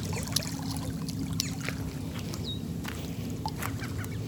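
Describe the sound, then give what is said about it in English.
A steady low mechanical drone of tugboats and industrial plant noise hums continuously in the background over industrialized land, with faint scattered clicks and watery trickles over the top and no voices. “And then there's just all this industry in the background that you can hear. These tugboats and plants and endless white trucks.”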